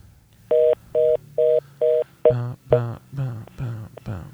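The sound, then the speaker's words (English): Four crisp keypad dialing tones beep in an even, quick rhythm as a call is placed, followed by a run of louder, warbling voice-like sounds. “Yeah, let's call that number.”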